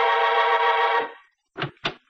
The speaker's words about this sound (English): Just as I was puttering around getting ready, the apartment buzzer buzzed.